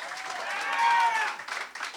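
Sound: audience clapping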